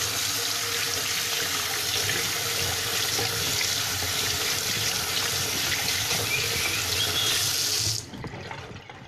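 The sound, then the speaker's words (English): Water coming to a boil gives off a steady, dense rushing hiss with low bubbling underneath, holding constant for about eight seconds before cutting off abruptly. No one speaks. “Oh, this is reaching the boiling point, that's very nice.”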